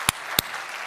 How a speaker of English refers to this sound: Don't go giving me your golf claps, okay? You give me your clap. Let's do it again. Let's celebrate that.